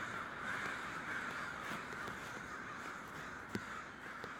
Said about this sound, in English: And you can't help but notice it is getting close to sunset. And so the night sky is starting to creep back up. But the crows are still out.